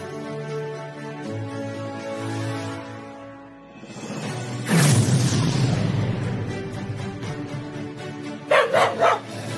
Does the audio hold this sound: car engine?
no